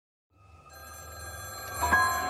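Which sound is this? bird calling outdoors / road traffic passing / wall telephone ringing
wall telephone ringing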